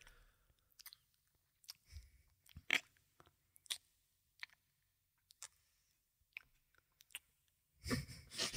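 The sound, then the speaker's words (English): A woman makes soft, wet kissing noises with her mouth for 15 seconds, re-enacting how long she kissed her dog: a dozen or so quick smacks and clicks at an irregular pace, mostly quiet, ending in a slightly louder, rustling burst. “Just like a subtle mouth kissing noise.”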